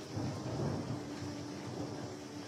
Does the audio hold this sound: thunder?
yes